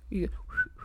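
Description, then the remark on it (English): A person whistles a short, steady mid-pitched note following a brief voiced sound at the start. Under a second long, with a faint low hum underneath. “And he blows a raspberry and he whistles. … can whistle as well now.”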